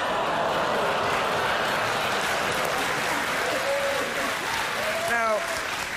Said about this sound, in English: Notice how the crowd was shocked at first, but in just a few seconds, they were cracking up and applauding. That's because they're not idiots, and they understand or get what the joke is, that they look alike.